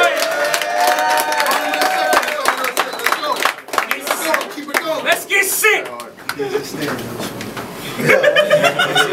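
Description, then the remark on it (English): A crowd roars and cheers steadily for several seconds, with scattered clapping, laughter and shouting voices blending into a loud, dense wash of noise that swells again near the end. “Everybody make some noise!”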